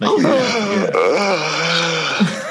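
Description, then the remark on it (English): A drawn-out, moaning yawn, loud, its voiced pitch sliding and wavering over a couple of seconds before trailing off with a breathy release. “Is that supposed to be a yawn?”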